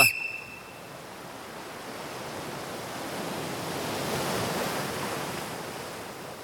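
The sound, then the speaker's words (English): Steady ocean surf washes continuously onto the shore, a broad hiss that swells gently toward the middle and eases off again, with no voices present. “Listen to the waves.”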